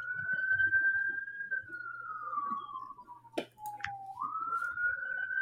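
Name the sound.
police car siren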